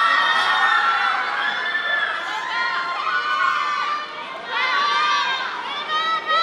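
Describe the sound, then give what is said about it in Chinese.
A crowd of excited fans scream continuously, many high-pitched overlapping shrieks rising and falling together, loud throughout with no break. Fans at the Hong Kong airport arrival gate greet a member of a Korean boy band, as he walks out of the gate. “…在工作人员陪同下步出闸口， fans 尖叫声四起，…亦特登停低收粉丝的礼物，态度相当亲民。”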